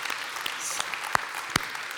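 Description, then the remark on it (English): A church audience at the Niwot campus applauds the moms on Mother's Day, a dense patter of many hands clapping at once, with a few sharper individual claps standing out above the wash. No one speaks. “I mean, if you're not clapping for your mom, you got a problem, you know?”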